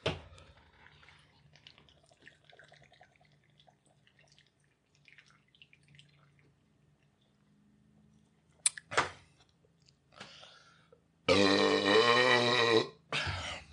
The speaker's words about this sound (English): Yeah, drinking a lot and chugging is 2 different games. Yes. Like, I can chug 1 beer, no problem. Oh, see, we're just going to chug. Fuck it. Cheers.